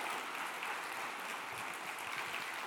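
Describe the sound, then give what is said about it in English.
A crowd gives a round of applause to a man for his help, many hands clapping in a dense, continuous patter that holds an even level from start to finish, with no voices rising above it. “Come on, give him a round of applause for the help.”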